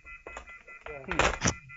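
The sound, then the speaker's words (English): A telephone handset clunks and rattles as it is set down and hung up, a few plastic knocks in quick succession, with muffled voices murmuring underneath. “I'm trying to find my mic, and you're trying to hang up your phone, and it's very interesting.”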